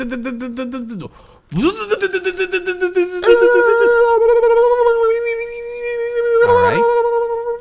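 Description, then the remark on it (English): A voice imitates a car engine failing to start: a rapid sputtering, cranking rhythm, then a strained sustained drone that sags and wavers. A brief spoken phrase comes first. “That is the sound of the car.”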